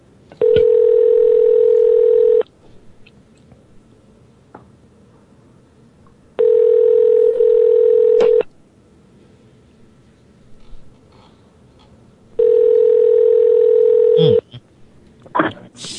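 A telephone line tone sounds in three steady, buzzy two-second bursts, each separated by about four seconds of quiet line hiss with a few faint clicks.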